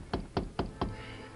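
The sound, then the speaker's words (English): Four evenly spaced knocks on the wooden door of a first floor hotel room, solid, each a dull thud with a short ring, followed by quiet room tone. “He rapped on the door.”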